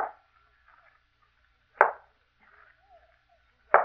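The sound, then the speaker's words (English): Three single sharp knocks on a door, spaced about two seconds apart, each a short hollow thud with quiet, faintly hissing pauses between and no voices. “Someone knocked at the door.”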